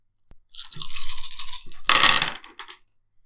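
A handful of nine dice, rolled in a game, rattles and clatters for about two seconds, shaken briskly, then spills out in a louder burst of clicks before settling. Fairly loud, with no talking.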